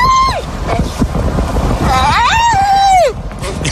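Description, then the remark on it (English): A dog lets out loud, shrill, drawn-out yells that sound like a shrieking girl: a brief cry, then a longer wavering wail that rises and falls, over steady windy, rumbling background noise. “And for no reason, just starts doing this college girl yell.”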